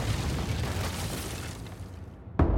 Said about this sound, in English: When the deadline passes, the Aurora's guns start to do what they do best. The bombardment of the Winter Palace carries on for hours. Directly across the Neva, the Peter and Paul fortress joins in, pummeling the stucco walls with shells.